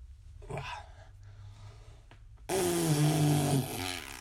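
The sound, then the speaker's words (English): A loud, buzzy fart noise made by a person with the mouth, lasting about a second with a wavering, sputtering pitch, preceded by a short breathy puff and quiet background. “We're going to be experimenting with the fart now.”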